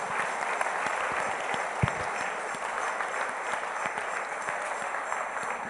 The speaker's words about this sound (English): Then let's give a clap offering to the Lord. Clap like you really mean it. A clap offering to the Lord.